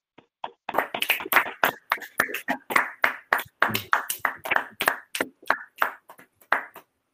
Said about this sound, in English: So let's give a round of applause for my husband, as he calls me, his wife, for Practitioner Kenneth Morris.